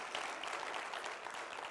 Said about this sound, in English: Fantastic. Go ahead and clap again. Y'all are getting good at it.